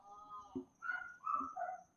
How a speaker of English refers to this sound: I'm sorry. My dogs have literally no chill.